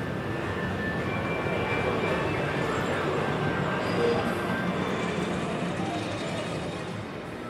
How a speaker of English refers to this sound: Oh, and here's the ghost train, the horror hotel. Exactly. It's all here. So now we're at the end of the pier. We're definitely where all the rides are.